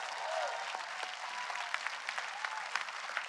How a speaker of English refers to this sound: Who healed you? Jesus healed you. That's right. Come on, give the Lord a clap and a shout.